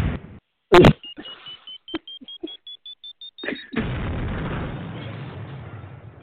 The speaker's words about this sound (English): Cue the time bomb. Yep. Did y'all hear the time bomb? Cue the time bomb.